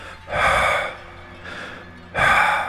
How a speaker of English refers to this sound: Suddenly I heard a loud wheeze.